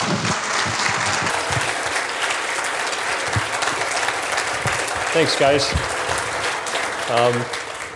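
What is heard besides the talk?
audience applause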